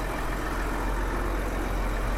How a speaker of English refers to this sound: Yes, and we'll just wait for this big truck to go past.